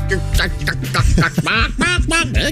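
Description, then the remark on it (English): Someone mimics a chicken with a rapid run of loud, squawky clucks and warbling vocal bursts, with no other sounds around them. “Chicken? I love making chicken noises.”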